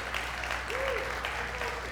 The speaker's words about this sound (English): We used to have epic games of manhunt. Anybody remember manhunt? Come on, clap it up for manhunt right now.